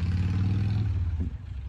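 A motorcycle engine rumbles loudly, a low steady drone that shifts and eases slightly as the bike pulls away with its rider, with no voices.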